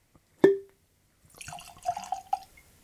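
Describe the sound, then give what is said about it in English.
Young Indiana rye whiskey named The King, aged at least three years, poured into a glass: a single ringing clink of glass, a short pause, then about a second of bubbly, gurgling glugs as the liquid flows in. No talking. “So let's go ahead and get that poured.”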